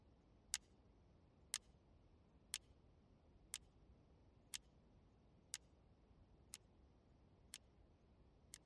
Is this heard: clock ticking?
yes